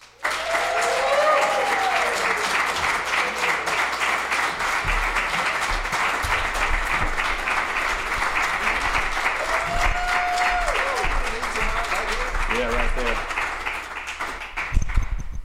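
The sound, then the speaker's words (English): An audience at Songbirds welcomes a guest musician to the stage, applauding steadily and loudly for about fifteen seconds, a dense wash of clapping with scattered whoops and cheers rising above it, before tapering off near the end. “Yeah, if you want to give another round of applause, it'd be great.”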